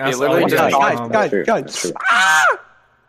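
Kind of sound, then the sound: human body sound, screaming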